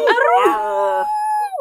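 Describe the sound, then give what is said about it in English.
A person's voice mimics a wolf howl, a single sustained wavering tone with rich harmonics that rises, holds steady, and trails off, loud with no other talk. “What if I just try to speak wolf?”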